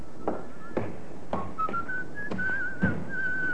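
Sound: man whistling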